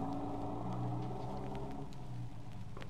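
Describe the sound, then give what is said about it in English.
A truck engine rumbles with a low, steady drone and faint shifting tones as it pulls away from an alley, staying fairly loud throughout with no voices. “The truck pulled away.”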